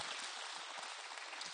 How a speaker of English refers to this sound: And so let's just give thanking God, but let's give applause